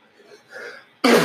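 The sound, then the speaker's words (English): A single loud sneeze bursts out after a second of quiet, breathy inhaling, cutting in abruptly and filling the sound right to the end. “Sorry, I got a sneeze.”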